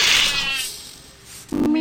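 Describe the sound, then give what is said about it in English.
A cat meows in a video game in a single drawn-out, wavering cry with a bright tonal edge that slowly fades, then a short, louder burst of noise cuts in at the end. “Meow, Sarek.”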